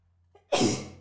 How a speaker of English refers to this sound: I am so sorry. I can't stop sneezing.